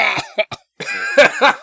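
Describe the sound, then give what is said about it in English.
A loud coughing fit: several quick, harsh coughs in rapid bursts, a brief pause, then two or three more strained coughs, with no talking. “Just got me coughing.”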